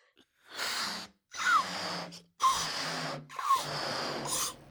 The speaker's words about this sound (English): Anyway, first, how to blow up a balloon properly. Now to do this properly, you'll need to buy a proper balloon from a proper balloon shop. And if you can't find one, I'm not going to hang around for you. So just watch me. Ready?